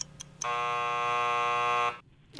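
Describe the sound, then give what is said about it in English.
A game timer buzzer sounds once, a loud, harsh, steady blast lasting about a second and a half before cutting off abruptly, with no voices over it. “After the buzzer.”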